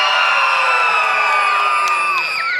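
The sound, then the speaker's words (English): Loud, high-pitched screaming and cheering from children during a church service, a sustained wall of shrill voices lasting a couple of seconds without pause. “That's a very reserved, I'm in church scream, okay?”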